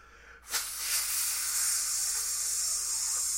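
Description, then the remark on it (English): A voice imitates a sparkler with a sudden sharp onset followed by a steady, bright, crackly hiss that holds for about three seconds, sounding alone without any talk. “Do you want to hear what a sparkler sounds like?”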